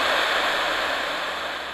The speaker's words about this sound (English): And then it is static for the rest.